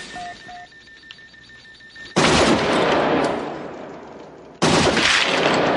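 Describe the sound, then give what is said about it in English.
Two heavy shots from the Cobra Assault Cannon, a film weapon based on a 50-caliber sniper rifle, ring out a couple of seconds apart, each a sudden, loud blast with a long rolling echo, following a quiet stretch with faint electronic beeps. “I read that it's like a 50 caliber sniper rifle that they made look more high-tech.”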